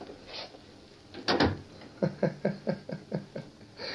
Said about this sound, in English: Close the door.